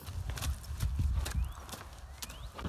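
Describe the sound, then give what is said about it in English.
A young horse noisily eats wet slop for breakfast, with irregular slurping, smacking bursts and low snuffling rumbles, a few faint squeaks in between and no talking. “Can you hear that pig noise in the background? That would be baby Kasan eating his slop for breakfast.”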